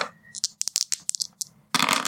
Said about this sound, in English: I'll still roll. So, go ahead and roll two dice.